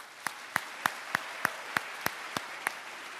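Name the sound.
audience round of applause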